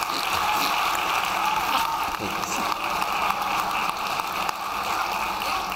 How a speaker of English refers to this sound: Give him a hand clap. Thank you.